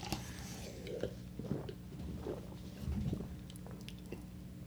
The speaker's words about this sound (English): I could hear you just did like two gulps